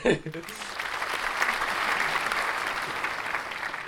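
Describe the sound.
A crowd claps steadily in a dense, sustained burst of applause, fairly loud and continuous, with a brief voice-like sound at the very start.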